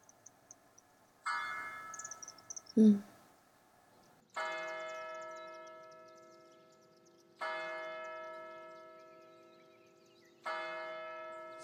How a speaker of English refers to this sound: Wait a second. Wait, hold up, listen. Did you just hear that? Those are church bells. There's like a morning service going on somewhere.